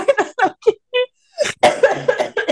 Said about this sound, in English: He's gonna hear beep and then you coughing.